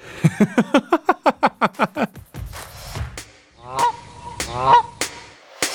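A rapid run of about a dozen loud, nasal goose honks, then a scuffling pause and a few more spaced, drawn-out honks from geese. No one speaks.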